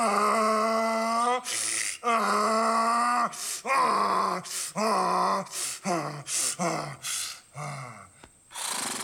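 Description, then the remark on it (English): A man, the assassin's son, grabs his lips and imitates a donkey bray on request, with long, strained, harmonic hee-haw groans breaking into a rapid series of shorter, choppy gasping honks, loud and alone throughout. “And the assassin's son, this sketchy looking dude, just plops down, grabs his lips, and starts ripping into the goofiest donkey impression you've ever heard.”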